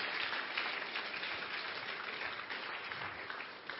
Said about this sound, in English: First, let's celebrate these soul winners. See how you are clapping like jealous people.